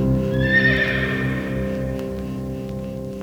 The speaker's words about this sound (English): And as soon as we heard it, we're like, that's hilarious, and it's staying on the album. Yeah. Like, we have to have hilarious, that. Hilarious, and we love it. Yeah, we loved it. And so there's a horse neigh at the end of this song.